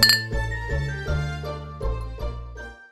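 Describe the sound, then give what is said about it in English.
Sherry glugs from a bottle into a glass in a steady series of about seven ringing pulses, with a bright glassy tone over each gurgle and no voices. “Well, the sounds of sherry being poured let us know that it's time to head back to the Christmas kitchen for Mrs.”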